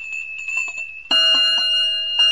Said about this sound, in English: I did everything you told me you were doing at a big fire. I blew my siren. Then I rang my bell.